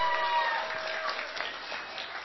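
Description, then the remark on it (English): A crowd at a school prize announcement applauds steadily, a dense wash of many hands clapping at once, holding a fairly even, moderate level throughout without any clear pause. “Okay, big round of applause.”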